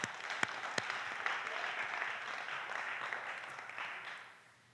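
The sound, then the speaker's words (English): An audience applauds the interns for their video for several seconds, a dense steady clatter of many hands clapping with a few sharper individual claps near the start, fading out at the end. “Let's give our interns a round of applause for doing that video.”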